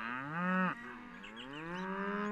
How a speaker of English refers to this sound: And I suppose at the moment I should also say something about cows can provide beautiful music.